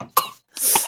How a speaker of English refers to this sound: Let me take your temperature. Cough.